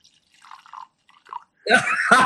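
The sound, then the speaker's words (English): A few soft clicks and small handling noises as a drink is cracked open, then a sudden loud rush of the drink being poured, splashing and fizzing steadily for about half a second before continuing. “You poured it for effect.”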